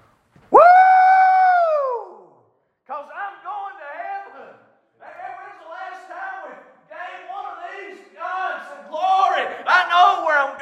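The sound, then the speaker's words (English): An audience shouts in worship: one long, loud cry rings out first, then a crowd of voices answers in waves of whooping and calling that swell louder toward the end. “Well, when's the last time we just gave her a shout?”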